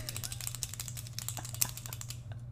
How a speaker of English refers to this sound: Oh, this is great. We both have clicky pens.